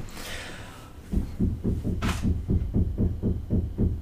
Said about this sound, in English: If you are a ghost and you're there, oh my God. Knock again. Stop saying that. Just knock again if you're there.